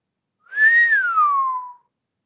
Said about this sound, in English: … whistled.